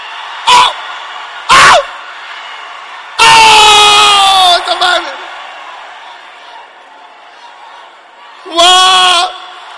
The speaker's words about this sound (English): People are shouting, this is a boyfriend, this one.